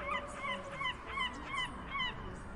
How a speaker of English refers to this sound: She could hear seagulls squawking